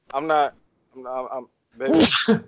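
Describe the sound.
Two short voiced sounds, then a loud sneeze: a rising breathy intake that bursts into a sharp, hissing blast, trailing off in a brief voiced tail.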